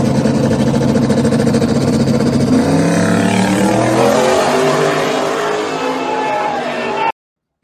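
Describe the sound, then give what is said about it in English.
A loud race car engine revs hard, its pitch sweeping down and climbing again over several seconds, with voices faintly mixed underneath before it cuts off abruptly. “Lighting it up right there. Love that car.”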